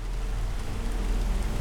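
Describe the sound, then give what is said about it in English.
Heavy rain of a full-blown thunderstorm pours down near the Tennessee-Georgia border in a dense, steady hiss with a deep low rumble underneath, continuous, with no voices. “As he trudged along, heavy rain began to fall.”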